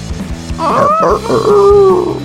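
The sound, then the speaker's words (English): A person imitates a rooster's crow with a loud, strained voice: a rising burst followed by a long, wavering high note that holds to the end, with soft low thumps before it. “can you do a rooster?”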